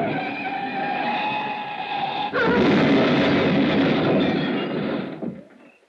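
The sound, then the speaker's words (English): A car with a tire shot out skids with a sustained, high tire screech on a curve near the Pacific Coast Highway, then slams into granite cliffs with a loud crash; grinding, rumbling impact noise follows for several seconds before fading out. “The Pacific on one side, granite cliffs on the other. I picked the cliffs!”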